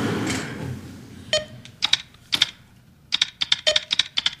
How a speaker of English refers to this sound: He needs to take typing lessons.